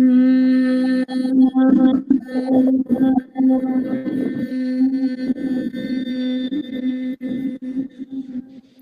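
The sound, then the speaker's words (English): A voice hums one long, steady low note into hands cupped at the front and back of the forehead during a third eye chakra exercise. The buzzing tone is rich in overtones, holds its pitch for several seconds and dips briefly now and then. “And then vibrant hum into the hands.”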